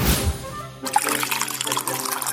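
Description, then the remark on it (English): Liquid pours steadily into a cup, a continuous splashing trickle lasting a couple of seconds, with no voices over it. “Pour yourself a cup of your favorite hot or iced beverage, and let's dive into the enchanting world of Disney.”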